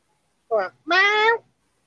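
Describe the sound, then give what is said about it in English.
A cat meows twice, a brief chirp followed by a longer, drawn-out meow, with no one talking over it. “I hear the cat.”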